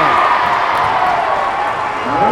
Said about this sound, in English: You can hear the Muhammad fans now. Bulldogs are giving them something to cheer about.